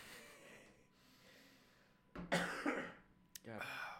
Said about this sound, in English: I don't think it picked up my cough as much as I thought it was going to.